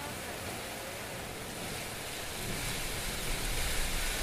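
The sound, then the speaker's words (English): Heavy rain pours down in a dense, steady hiss that fills the whole clip, swelling slightly louder in the second half, with no voices. “God, it's raining so hard.”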